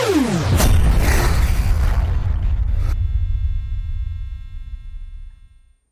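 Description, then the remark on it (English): A video-game explosion effect for losing the game when two aircraft fly into each other, composed of seven layers: a quick falling whoosh slams into one loud, crunchy blast, then a deep rumble rolls on and slowly fades over several seconds. No voices. “Another sounds that we had here as well is when you kind of lose the game, which of course means there was an explosion, because you have two aircraft flying into each other.”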